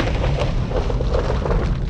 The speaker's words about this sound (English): Rowan raised her hand into the air and clapped her hands together. There was a mighty crack of thunder. The room about us began to shake as if in the grip of an earthquake.